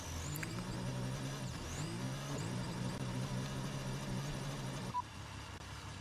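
Yuki's Formula One car engine, heard on team radio from Mexico, whines steadily at high revs, its pitch rising and dipping with gear changes, loud and continuous before dropping off abruptly near the end.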